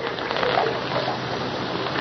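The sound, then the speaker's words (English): A woman in a white nightdress washes her face and hands in a water pail by firelight, a steady run of soft splashing and trickling at moderate volume with no voices. “Washing her face and hands in the water pail.”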